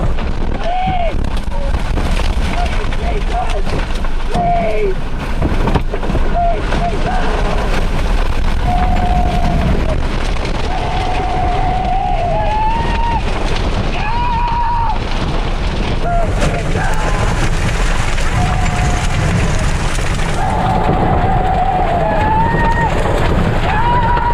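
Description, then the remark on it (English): Tornado winds roar around and into a car after its back window is blown out, as the car starts to move, in a loud, unbroken wall of rushing noise, with wavering whistling tones rising and falling and indistinct voices buried underneath. “you see the tornado inside the car. Now the car is starting to move.”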